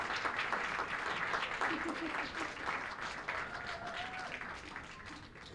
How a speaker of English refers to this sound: Here they are, Transom Traveling Workshop, Seattle. Oh, nope, we're not here all yet. 2019, big round of applause if you would, please.